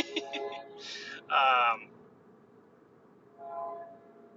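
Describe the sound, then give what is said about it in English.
A train rumbles by, with a loud, brassy burst in the middle and a softer tonal blast near the end, over a steady low background hum. “There's a train. Did you guys hear that?”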